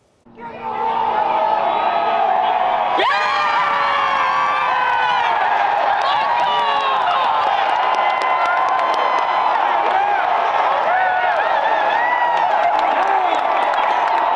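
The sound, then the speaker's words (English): A golf gallery bursts into loud, sustained cheering after Taylor's winning putt, with Adam Hadwin standing greenside with Taylor's family in a green hoodie cheering him on; a roar of whoops and shouts that swells early and holds steady to the end. “Yesterday, Hadwin was once again standing at greenside with Taylor's family, wearing the same green hoodie, cheering Taylor on.”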